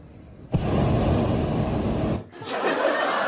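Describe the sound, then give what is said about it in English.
A hot air balloon burner fires in a loud, steady roaring hiss for under two seconds, cuts off abruptly, then a softer rushing blast starts again right after. “I made a precautionary landing in my hot air balloon.”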